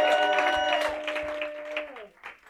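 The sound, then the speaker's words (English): An audience applauds a song written locally, with dense, steady clapping over a sustained musical chord; the chord slides down in pitch and cuts out near the end as the clapping thins. “No, we can applaud to that, too.”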